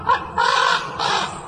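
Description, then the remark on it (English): A white raven in Anchorage in winter calls three times in a row, harsh, raspy caws that are loud, each one drawn out, with no voices around them. “But chances are White Raven will move on come spring and head into the wilderness.”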